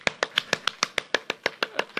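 crowd, audience clapping in rhythm

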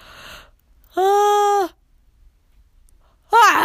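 human body sound, yawning

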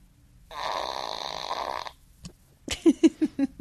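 human body sound, fart sound

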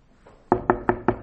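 impact, knocking on a door

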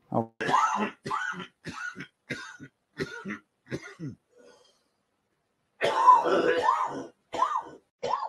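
human body sound, coughing and throat clearing

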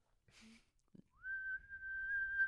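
human body sound, person whistling

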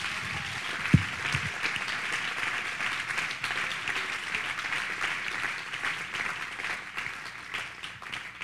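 crowd, audience clapping hands

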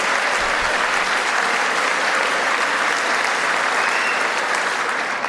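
crowd, standing ovation applause

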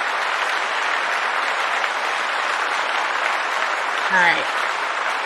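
crowd, round of applause

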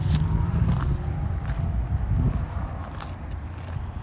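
human body sound, footsteps walking away

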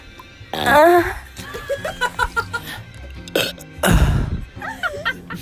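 human body sound, burp

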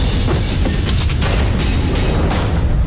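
sound effect, fireworks exploding

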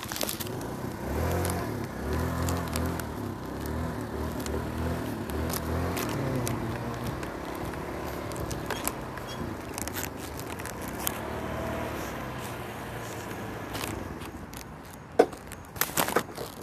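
vehicle, road traffic outside

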